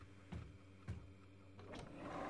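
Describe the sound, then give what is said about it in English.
Clothes go into a washing machine: two quick clunks of the drum and door, followed by a low mechanical whir that builds steadily. No one speaks. “Just put them in the washing machine. Okay, I'm doing it.”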